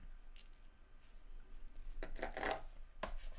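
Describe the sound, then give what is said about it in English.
Dice clatter and tumble on a hard surface: a faint early click, then a burst of rattling impacts and one final knock, with no talking. “I heard dice.”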